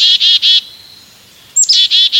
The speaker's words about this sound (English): Now, a couple of energetic black-capped chickadees dart in.